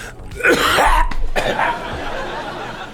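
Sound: person coughing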